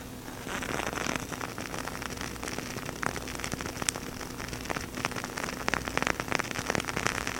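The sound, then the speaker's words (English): A crackling candle flame from a wick shaped like an X, held up to the microphone, gives off a dense, steady stream of sharp pops and snaps over a soft hiss, irregular in rhythm and fairly loud throughout, with no voices. “So I'm gonna put this up to the microphone so you can hear the crackle.”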